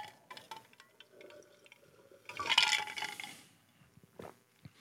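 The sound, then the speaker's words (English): Quiet sounds of someone drinking water from a glass: light clinks of glass, a brief rush of liquid and swallowing in the middle, then a final small clink, with no talking. “It's just a little water time. Cheers.”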